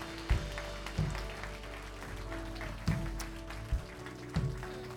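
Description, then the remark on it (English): A crowd claps steadily in a dense, continuous wash of applause for everybody who made the decision to have a relationship with God, with soft low thumps recurring about once a second and a sustained instrumental tone humming underneath. “If you made that decision, you're like, oh, that's nice. People are clapping.”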